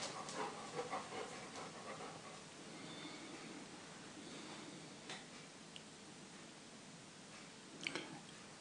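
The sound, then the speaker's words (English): An English setter dog named Louis pants steadily at seven in the morning, quick breathy huffs repeating in a loose rhythm, with a few brief faint whimpers and small clicks mixed in. No one speaks. “Louis is a English setter, is what the breed is called.”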